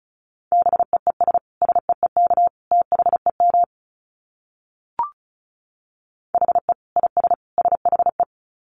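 Fast Morse code at 35 words per minute: a steady mid-pitched tone keyed into quick beeps, in two runs separated by a pause with a single brief click between them.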